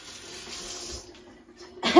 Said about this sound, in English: I need to wash off all the mustard and spices and everything that's on my hands. Just give it a rinse off.